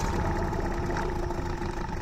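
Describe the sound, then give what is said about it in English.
A boat motor starts and then idles with a steady, low, throbbing rumble and an even mechanical hum, holding the same level throughout with no voices. “That's what the start of a great day on the water sounds like for my family.”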